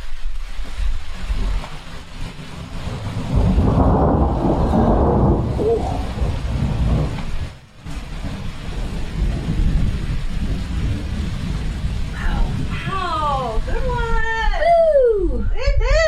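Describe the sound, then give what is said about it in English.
Steady, heavy California rain hisses throughout while a deep roll of thunder swells and fades early on; a brief voice and a few high chirping sounds come in near the end. “I think it'd be nice to end this show with just a little sound effects of real California rain.”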